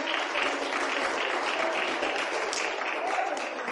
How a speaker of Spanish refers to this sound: Dele con fuerzas el aplauso al Padre, al Hijo y al Espíritu Santo, hermano.